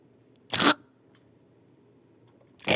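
Two short, abrupt burps about two seconds apart as spicy food repeats on the eater, each a quick breathy gulp from the throat, standing out against a faint low background hum with no talking.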